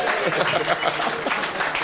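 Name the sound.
round of applause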